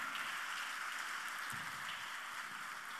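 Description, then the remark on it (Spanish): An audience applauds the Lord for His word in a steady, dense wash of clapping that holds evenly for a few seconds, with no voices over it. “¿Le quiere dar un aplauso al Señor por su palabra?”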